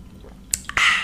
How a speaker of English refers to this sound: And then we're going to take a sip.